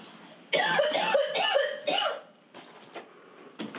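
A harsh, repeated coughing fit after smoking from a bong, several loud hacking bursts in quick succession over about two seconds, followed by quieter strained breaths and a few fainter coughs.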